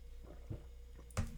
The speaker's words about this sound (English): I'm going to drink it again.